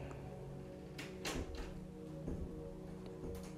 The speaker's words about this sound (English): Excuse the door.